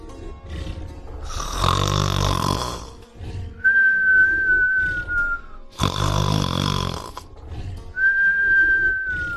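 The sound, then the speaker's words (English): A dragon snoring loudly like thunder: two deep, rumbling snorts, each followed by a thin whistling exhale, in a slow steady rhythm, forceful. “Soon the beast was snoring like thunder.”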